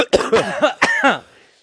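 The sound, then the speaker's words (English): A quick series of harsh coughs, about five bursts in a rough rhythm over a second, loud and dry, fading to quiet afterward. “Why does the drop make you cough?”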